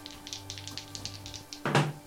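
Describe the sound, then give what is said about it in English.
A rapid series of light clicks and clatters as two dice, rolled at the same time for an investigation check, tumble across a hard table, followed by a louder knock as they come to rest. Fairly quiet, with no voices. “All right, I'll roll at the same time.”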